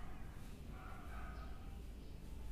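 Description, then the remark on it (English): A dog barks far off, faint and muffled beneath a steady wash of outdoor background noise, with no one speaking nearby. “Just breathe naturally and listen to the dog barking from afar from my place.”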